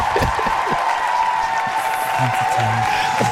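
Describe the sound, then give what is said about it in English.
A soundboard applause sound effect: a burst of roaring crowd applause, dense and steady for a few seconds at constant loudness, with faint voices mixed underneath the clapping. “Be a roaring applause.”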